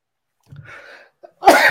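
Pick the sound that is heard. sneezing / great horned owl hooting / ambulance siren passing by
sneezing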